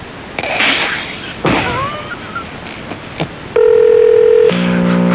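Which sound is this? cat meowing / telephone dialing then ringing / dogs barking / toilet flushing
telephone dialing then ringing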